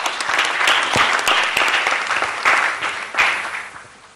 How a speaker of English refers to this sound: please, a round of applause for her.